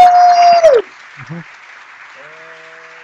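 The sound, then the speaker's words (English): A loud burst of applause with a steady whistle-like tone runs for under a second, then cuts off abruptly, leaving faint hiss and a brief murmur of voice. “I think 15 seconds of applause is enough.”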